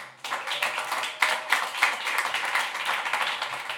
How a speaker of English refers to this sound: Big round of applause